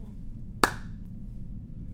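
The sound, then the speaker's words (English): A single sharp hand clap, made to sync video and audio recordings, cuts through low background hum, with a bright, quickly fading ring trailing briefly after the snap. “And let me do a clap so we know how to sync them.”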